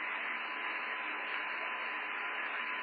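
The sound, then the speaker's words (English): Steady, dense radio static hisses without a break on the radio link of the spacecraft Challenger as it passes over Camelot at an altitude of 2,700 feet, a broad band of crackling noise holding at an even level from start to finish with no voices coming through. “Awful lot of static”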